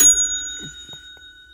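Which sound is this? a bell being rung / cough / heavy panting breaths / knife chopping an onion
a bell being rung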